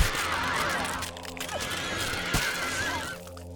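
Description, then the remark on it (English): A horse whinnies loudly with wavering, high-pitched calls that rise and fall over several seconds, with no talking over it. “This is kind of why I just don't like horses.”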